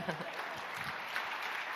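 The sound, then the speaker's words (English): An audience applauds after a song, a dense wash of many hands clapping at an even, sustained level for the whole stretch, with no single claps standing out. “Now you guys can clap.”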